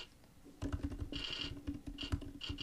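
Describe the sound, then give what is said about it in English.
Rapid clicking of keys on a computer keyboard, a steady flurry of taps with brief pauses, heard alone without any voices. “Are you looking down at your keyboard while you're typing and looking up?”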